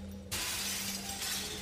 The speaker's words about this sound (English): And once I feel calm, I open my eyes and I start smashing all the mirrors with the tiny bit of strength I find in myself.